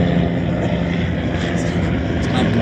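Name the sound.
police helicopter flying overhead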